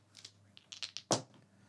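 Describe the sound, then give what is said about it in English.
Percentile dice are rolled on request for a percentage roll, landing on 36: a scatter of light, sharp clicks followed by one louder clack as they land, with no voices over them. “I need you to roll me a percentage dice right now, please.”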